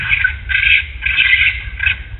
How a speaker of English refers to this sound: It was definitely a raccoon. There was, like, nothing terrifying about it.